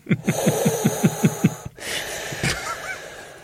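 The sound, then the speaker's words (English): Heavy, rasping breathing, loud, pulses in a quick steady run of about eight breaths as a man imitates an astronaut's breathing apparatus. After a short break comes a softer gasp over faint rustling. “your breathing apparatus doesn't seem to be working because you're unable to come out with more than three words before you have to have a deep breath.”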